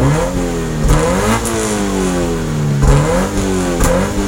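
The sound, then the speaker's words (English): A car engine revs up and down loudly, its pitch climbing and falling in several surges over a few seconds with no voices. “So let's get revved up.”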